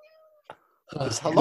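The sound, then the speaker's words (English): A cat meows once, fairly loud, a short rising cry near the end, after a quiet stretch with a faint hum and a small knock. “Just heard the cat go then, yeah.”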